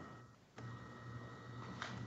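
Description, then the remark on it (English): A refrigerator kicks on with a soft click and settles into a steady, low electrical hum that continues quietly in the background, with no one speaking. “I think my fridge just turned on.”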